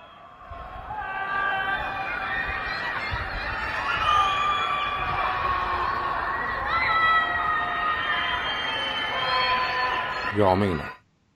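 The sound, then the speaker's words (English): Many voices scream and wail together from their apartments in protest, overlapping high cries echoing across an open space for about ten seconds before cutting off abruptly. “And here they are collectively screaming from their apartments in protest.”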